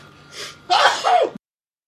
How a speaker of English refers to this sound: Oh, I'm going to sneeze now.